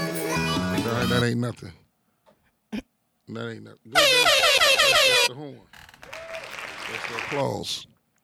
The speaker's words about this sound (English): That ain't nothing. The horn.